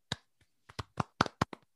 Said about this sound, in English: So Pete Gogolak. Pete Gogolak, baby. A round of applause?